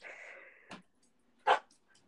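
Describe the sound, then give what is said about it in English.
A dog makes a drawn-out whine, then a short huff and one sharp bark, with no talking around it. “Bye, Rocky. Yeah, he's a hot bitch. He's a hot dog.”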